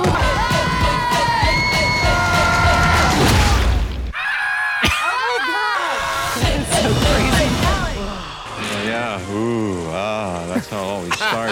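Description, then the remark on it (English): Several people in a film scene scream and shout in a loud, chaotic burst, as if fleeing in panic, with wavering shrieks overlapping amid clattering commotion throughout. “Later, there's running and screaming.”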